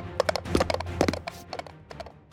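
Hooves of a small mechanical pygmy goat clip-clop in a quick, uneven patter of sharp taps, fairly loud, with no talking.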